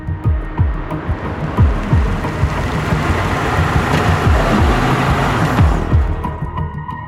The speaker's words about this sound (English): you guys notice the security car coming back around. Only it's not this, as it's getting closer, it's not the security car driving it.